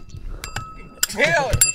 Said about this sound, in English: Hit the bell. Hit the bell. Hit the bell. Hit the bell.